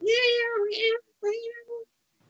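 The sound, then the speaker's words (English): A cat meows three times: a long, drawn-out, insistent first meow followed by two shorter ones, loud and clear with no talking over them. “The fucking cast woke me up at 6 o'clock this morning to feed him.”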